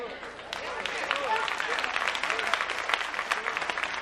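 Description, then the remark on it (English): An audience breaks into steady, dense applause, many hands clapping at once in a continuous crackling wash for several seconds, with faint voices mixed into the clapping. “Some women can't even clap because society has taught them that they should be a boss.”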